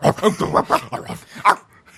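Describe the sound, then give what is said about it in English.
A person imitates a dog barking, letting out a rapid run of about half a dozen yappy barks that fade into softer, breathy yips at the end. “Yeah, we ain't cats. We dogs.”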